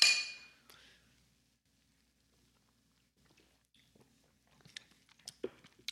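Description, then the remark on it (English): A bright clink of cans or glasses of Märzen beer in a toast rings out at the start and fades, followed by a quiet pause and then soft sipping and small mouth clicks. “So cheers, you guys, to Mutation.”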